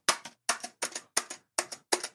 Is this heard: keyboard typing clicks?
yes